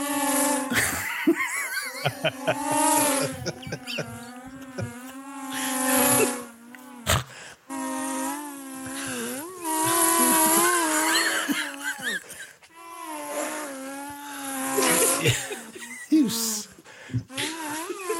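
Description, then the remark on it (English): A voice imitates a mini drone with a sustained, buzzing, warbling hum whose pitch wavers up and down, broken into three long stretches by brief pauses for breath, with occasional laughter mixed in. “I could do an impression of a drone.”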